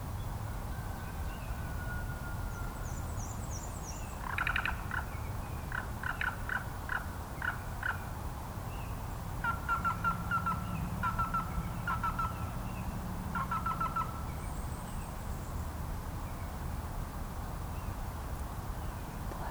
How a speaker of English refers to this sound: That's a black-billed cuckoo. One that I recorded the same summer I responded to my friend Jimmy's question. That rolling croak is coming from a drab, brown and white bird about the size of a mourning dove, but with a longer beak and tail.